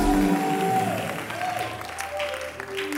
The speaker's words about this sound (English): Give the Lord a clap and a shout of praise. Yeah.